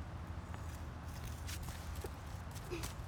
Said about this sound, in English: You hear the rustling on the leaves, right? So you know we're outside.